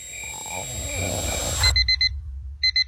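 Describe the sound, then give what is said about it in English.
A thin, steady high-pitched ringing tone, like simulated tinnitus, runs over low rumbling, growl-like sounds, then gives way to loud bursts of rapid electronic alarm beeping. “But imagine if you heard a ringing or buzzing noise like that all the time, while at work, while working out, and even when trying to sleep.”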